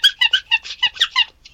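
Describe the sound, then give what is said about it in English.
A squeaky toy giraffe squeaks rapidly about eight times in a row, each squeak short and high-pitched, fairly loud with no voices. “I think it's either a kid's toy or a dog's toy, and it squeaks.”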